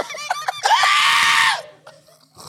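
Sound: person screaming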